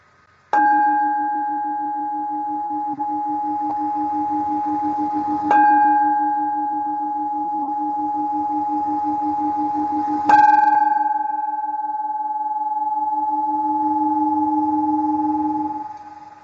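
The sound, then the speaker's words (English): Three loud strikes of the Liberty Bell, evenly spaced about five seconds apart, each with a sharp clang followed by a long, steady ringing hum that sustains between strikes. “So I'd like to take this moment to share the sound of the Liberty Bell with all of you. I'm going to give you three rings instead of the seven that I usually do.”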